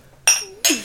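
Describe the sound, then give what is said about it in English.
Two bright glass clinks ring out about a third of a second apart, each with a sharp attack and a short shimmering ring, like glasses touched together in a toast. “Here, here. Cheers.”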